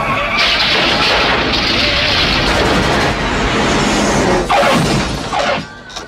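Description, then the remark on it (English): A loud, chaotic crash of a car driven by a drunk driver, totaling the car: a sustained roar of crunching metal and rumbling impact, with fresh bangs near the end before it quickly dies away. Faint voices may be mixed in. “The drunk ends up totaling the car to the horror of Les.”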